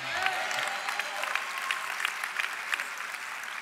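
A crowd applauds steadily, many hands clapping in a dense, continuous patter that holds at an even loudness for the whole few seconds, with no one speaking over it.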